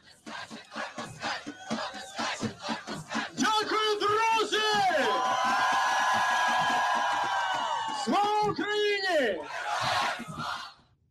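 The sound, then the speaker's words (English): A large crowd chants and shouts in unison, voices rising in long, sustained rhythmic calls that swell loudly, break off, then surge again in repeated waves. “simple but effective tools like catchy sing-alongs and chanting are employed.”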